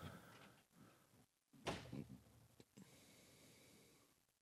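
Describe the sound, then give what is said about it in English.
A door slams shut hard and fast, one loud bang that rings briefly before fading, with faint murmuring voices and room noise around it. “Damn, that was a fast, hard door.”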